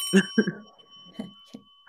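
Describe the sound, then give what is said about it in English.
A bright bell rings out clearly and its metallic tone keeps sustaining to the end, while a few short vocal sounds and bumps come and go beneath it. “You know what? I'm going to give you a bell.”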